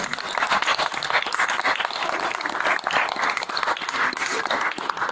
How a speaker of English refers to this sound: Well, thank you again. Big round of applause for ….